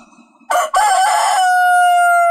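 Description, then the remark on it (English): A rooster crows once, loud, with a short broken opening followed by a long sustained held note that cuts off sharply, heard alone with no talking. “All right, concrete pump and rooster solo. Go, …, you're on.”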